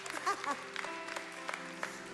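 An audience claps in a steady, scattered patter of overlapping hand claps for a couple of seconds, with a brief vocal sound heard near the start.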